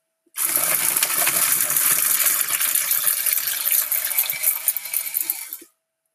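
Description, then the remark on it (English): A metal herb grinder being twisted, making a steady gritty, metallic crunching and rattling for about five seconds, loud and continuous, with no one talking. “No more messing around with some scissors and shit. This chops it up, boy.”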